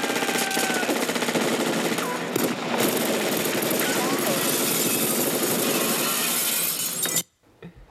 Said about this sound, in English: there's been lots of machine gun fire. There has. Glass is smashed everywhere.